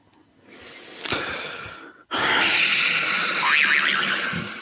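A soft breathy rush gives way to a sudden loud quiz buzzer, pressed during a Celtics trivia quiz, that blares steadily for about two and a half seconds, a warbling tone wavering through its harsh, noisy sound before it fades slightly.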